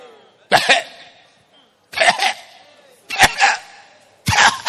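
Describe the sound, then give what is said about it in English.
Someone imitates a man coughing: four loud, harsh cough bursts, each rasping and breathy, spaced roughly a second apart with quiet gaps between them. “Then soon he started coughing.”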